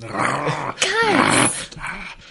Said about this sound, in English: Yeah, as soon as you speak loud, the creature starting to growl a bit louder.